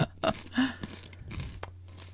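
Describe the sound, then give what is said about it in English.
Close, moist chewing sounds with a few irregular crunchy bites and smacks, like someone eating a sandwich right by the microphone, over a faint low hum and no talking. “Some of our listeners love it when they get to hear chewing in the microphone.”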